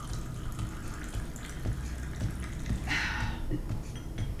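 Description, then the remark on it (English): Water runs steadily from a tap in a continuous rushing stream, moderately loud, with a brief brighter splash partway through as the flow hits something. “Taps just fine, then. That's more like it.”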